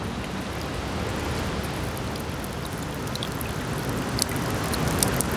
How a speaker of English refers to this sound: There's a roof over the snack bar too. And since it's raining today, you can also hear the water rolling off the roof and hitting the snow on the ground, slowly melting away at the snow and creating puddles.